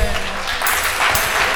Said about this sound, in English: Can we give the Lord a hand clap of praise?